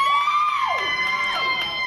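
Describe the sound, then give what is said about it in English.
A crowd of people screams and cheers excitedly, several high voices rising and falling in loud, overlapping whoops that fill the whole moment, reacting to news that the Knicks traded for Josh Hart. “All those people in the back screaming don't know who the hell Josh Hart is.”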